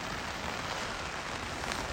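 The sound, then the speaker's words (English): Steady rain patters on the taut fabric of a floorless tent shelter in the high country, a dense, even hiss of countless drops with no pauses, moderately loud, with no voices. “But maybe this is it coming sooner, which I kind of hope is the case, because then I can have a whole day hunting tomorrow instead of laying in the tent getting rain and snowed on like I am right now.”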